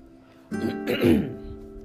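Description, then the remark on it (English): A single throat clearing: a rough, raspy burst lasting under a second, rising then fading, with no talking, over a faint steady background hum. “Let me clear my throat before we get going.”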